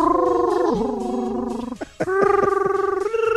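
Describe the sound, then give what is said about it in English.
A voice imitates a cat purring while singing: sustained, buzzy sung notes with a rapid fluttering rumble, stepping between pitches, with a brief break midway before a higher, steady tone. “It's like a singing purring cat.”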